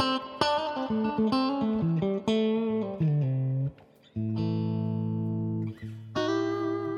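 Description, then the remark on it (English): An electric guitar played through a 1969 Princeton Reverb tube amp: a quick run of picked notes and double-stops, then full chords left ringing with a bright, harmonically rich sustain, and no one talking. “But you can tell, this guitar isn't quite as full-bodied as the 54.”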